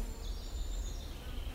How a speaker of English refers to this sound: They are enjoying their life in the air with wings that beat faster than any other wings in the animal kingdom, 1,000 times per second. This is the high-pitched buzz that I hear when midges are swarming around my ear.